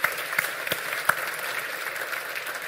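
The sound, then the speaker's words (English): An audience claps steadily in a dense, continuous patter of many hands, with a few sharper individual claps standing out, in a round of applause thanking a guest for coming. “Can we give him a round of applause, please?”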